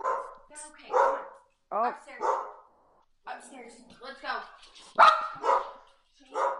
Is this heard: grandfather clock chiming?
no